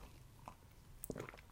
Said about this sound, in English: I mean, actually just took a sip of, I've got some coffee that I'm drinking right now that's pretty awesome.